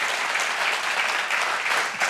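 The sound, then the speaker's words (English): An audience applauds steadily for everybody watching online, a dense, continuous wash of many hands clapping at once with no pauses, holding an even loudness throughout. “Come on, can we give a round of applause for everybody that's watching online?”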